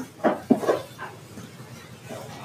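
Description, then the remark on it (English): A dog barks a few short, quick times in the first second, then a softer yelp trails off; the barks are moderately loud and stand alone without talk. The barks are given as Clifford the dog saying bow wow, in a reading of animal sounds from a children's book. “Clifford says bow wow.”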